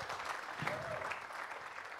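A church audience at Anchor claps together in a steady, dense wash of applause that holds an even level for a couple of seconds, with a faint murmur of voices underneath.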